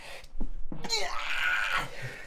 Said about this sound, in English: Go ahead, continue. I just have to sneeze.